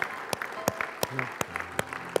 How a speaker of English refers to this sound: In Jesus' name, would you give the Lord a clap for his word today? We love you, Lord.